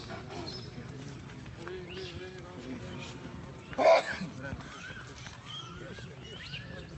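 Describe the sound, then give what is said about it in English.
A single sharp dog bark rings out midway, loud, over a steady outdoor murmur of a group of people talking and walking with dogs along a parikram path. “This is a group of us walking. There's the dogs.”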